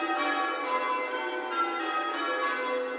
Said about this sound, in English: This is a method called the 20 All Over, which is from Tintinologia, which was the first book to be published on change ringing from 1668. It's been recreated and rung by the bell ringers of St. Bartholomew the Great at Smithfield.